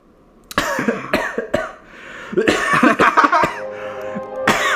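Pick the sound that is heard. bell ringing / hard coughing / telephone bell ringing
hard coughing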